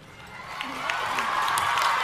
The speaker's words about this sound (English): And you hear the crowd's applause.